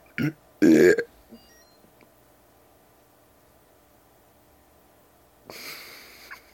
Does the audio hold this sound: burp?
yes